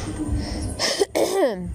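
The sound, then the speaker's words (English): A short, rough cough or throat-clearing burst from a single person who thinks they have a cold, followed by a brief pause and a throaty voiced sound that trails off. “And I think I have a cold or a cough.”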